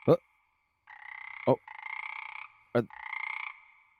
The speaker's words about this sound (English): Are those toads? Weird.